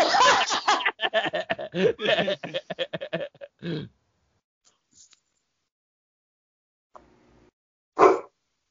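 A dog barks in a fast run of yaps for several seconds, falls quiet, then lets out one more loud bark after a pause.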